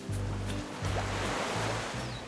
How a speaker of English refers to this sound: Today, he lives just a stone's throw from the beach, in Barbados. Outside his window, you can see the crystal water, hear the waves crash.